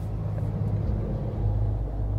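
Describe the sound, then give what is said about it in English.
A car engine idles and rumbles steadily, a low continuous drone as a man moves his car a short distance, with no voices. “He just moved his car a bit.”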